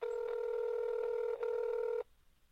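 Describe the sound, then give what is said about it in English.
A steady electronic ring tone on a phone call, loud, holding for about two seconds with a tiny break midway, then cutting off to near silence. “Well, it is ringing at the moment.”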